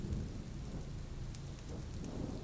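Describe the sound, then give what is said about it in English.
Low, continuous rumbling of distant thunder rolls steadily beneath a hiss of steady rain, with no voices and no sharp cracks, just a deep, sustained storm murmur. “The distant thunder of splitting chasms rolled across the Gurish heartlands as a prehistoric god awoke.”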